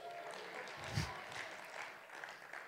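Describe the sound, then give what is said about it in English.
A crowd claps steadily, a dense patter of many hands with one slightly louder burst near the start, continuing throughout without any talking. “I love the clapping.”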